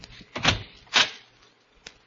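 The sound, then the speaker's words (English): A door is handled: two broad, scraping thumps about half a second apart, then a faint click, with no one speaking. “Who was that at the door?”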